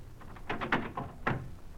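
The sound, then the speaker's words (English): A door being opened: a short cluster of knocking, rattling clunks followed by one sharper thud a moment later, with no talking. “Open this door.”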